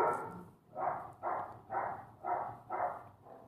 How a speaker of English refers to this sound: All right, what do we got here? Dogs are going crazy.